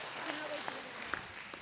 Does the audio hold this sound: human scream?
no